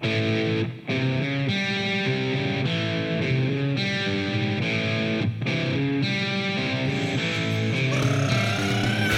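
A loud, distorted electric guitar drives a full-band indie rock song intro, dense and steady with a couple of brief drop-outs before the sound builds again. No voices.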